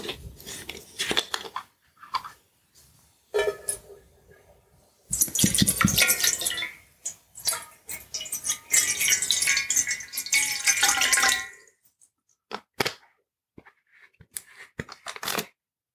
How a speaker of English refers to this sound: So, if I may begin, just going to start off by pouring a bottle of water into a small dish that I have.